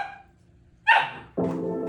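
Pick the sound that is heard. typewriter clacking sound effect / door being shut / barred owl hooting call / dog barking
dog barking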